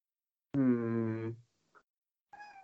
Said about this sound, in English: Uh-oh, my cat's up here too.